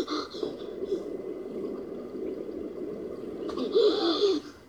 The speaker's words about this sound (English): Now, the way he's breathing like that, y'all, this is me on, like, a regular basis because I got bad anxiety.